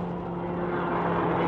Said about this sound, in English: In fact, that car coming toward us is breaking the speed law.